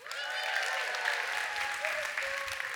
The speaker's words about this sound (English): How about a round of applause for our monkey group?